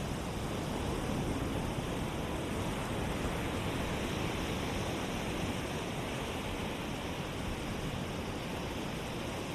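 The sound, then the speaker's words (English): Ocean waves wash onto a beach in a steady, continuous hiss of surf with no distinct crashes, moderately loud and even throughout, with no voices. “Waves simply arriving on the beach and returning to the ocean.”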